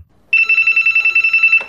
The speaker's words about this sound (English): And there is a long, long, long wait until the phone rings.